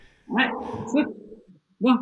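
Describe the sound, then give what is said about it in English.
Dogs fighting, with a long tangle of yelping, whimpering barks followed by a brief pause and one more sharp burst. “Oh, the dogs are fighting.”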